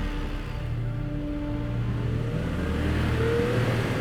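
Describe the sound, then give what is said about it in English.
An SUV engine hums steadily, then revs up with a rising pitch as an armed man who rushed out of a meeting drives off toward the Westgate mall in Kenya, a loud, continuous mechanical drone with no voices. “Abdul, who is armed with a 9mm Seska pistol, rushed out of his meeting and jumped into his SUV.”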